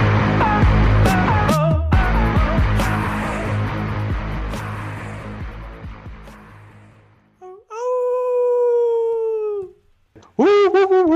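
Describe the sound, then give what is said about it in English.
After a stretch of loud music fades out, a dog lets out a long, steady howl, then a shorter rising howl right after, both fairly loud. “Forgot to mention them howling again.”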